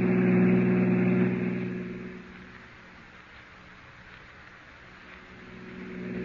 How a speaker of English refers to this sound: Oh, officer, can't you go faster? I'm driving as fast as I can,